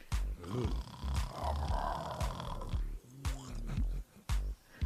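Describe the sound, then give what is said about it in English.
A voice loudly imitates snoring with rough, growling snorts and rumbling breaths, repeated in close succession for several seconds, harsh, with a few sharp clicks between snores. “So either you either real fine and you snoring like a damn bear.”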